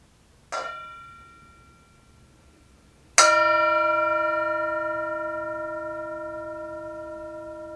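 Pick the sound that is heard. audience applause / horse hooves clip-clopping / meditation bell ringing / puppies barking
meditation bell ringing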